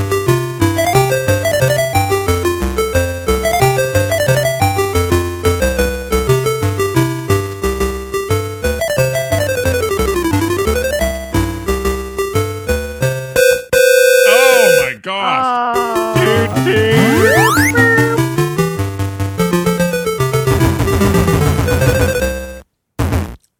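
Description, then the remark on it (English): Busy, loud chiptune audio from actual gameplay of the old Donkey Kong-era Popeye arcade game, played by a stranger who wins: bouncy bass lines and rapid beeping melodies, with sweeping pitch slides and zaps near the middle, ending with a short jingle. “This is actual gameplay.”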